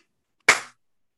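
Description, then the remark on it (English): One sharp, loud slap sound effect: a single crisp smack that cracks out of silence and fades within a quarter second. No voices accompany it. “Slap.”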